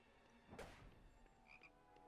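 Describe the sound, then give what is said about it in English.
A frog hat in a video game gives a single raspy croak near the start, followed by a couple of faint, short chirpy tones over a quiet background hum. No one speaks. “Frog hat.”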